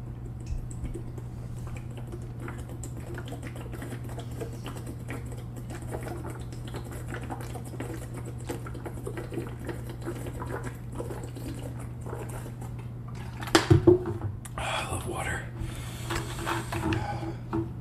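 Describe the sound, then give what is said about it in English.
Someone drinking water: after a long stretch of low steady hum and faint ticking, a couple of sharp knocks give way to a few seconds of sipping and swallowing, with no talking. “In fact, that reminds me, let's hydrate real quick”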